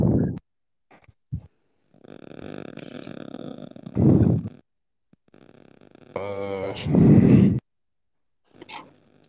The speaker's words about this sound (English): Somebody breathing hard as hell.